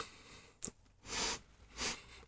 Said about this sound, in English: The sound of sniffing. It's podcasting gold.